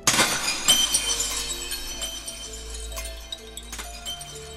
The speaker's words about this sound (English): Instead, the stiffened form of this once human totters precariously before you, before toppling over and shattering into a thousand crystal shards.